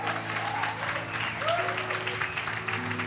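An audience claps steadily in a dense, continuous wash of many hands, with a low sustained hum and a faint rising tone underneath; no one speaks over the applause.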